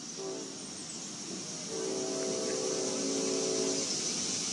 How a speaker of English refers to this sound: Lots of cicadas on this warm July day here in Cincinnati. Sitting here on the back deck.